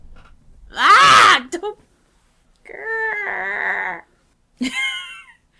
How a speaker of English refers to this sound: What were you saying before you yelled? Well, you're the one who grabbed me randomly. I'm trying to bring you closer to the microphone.